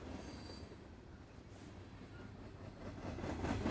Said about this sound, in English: You can hear the relaxing sounds of the wheels turning along the tracks.